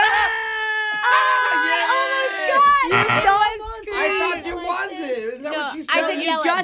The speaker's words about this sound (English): No, you all know what to do whenever we hear the secret word, right? Scream. That's right. For the rest of the day, whenever anybody says the secret word, scream real loud.